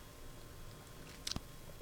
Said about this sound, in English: Ew. Not to community coffee, to the noises that you make when you drink your community coffee.